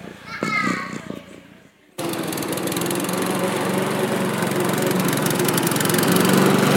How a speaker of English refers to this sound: That's Bill's lawnmower.